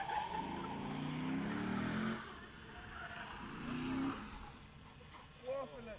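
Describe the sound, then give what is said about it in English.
A car drifting with tires squealing in two long, wavering bursts, the second shorter, over a steady engine roar and background noise, with faint voices near the end, during the Lexus 0 to 60 Challenge. “is drifting. If you can hear it, listen.”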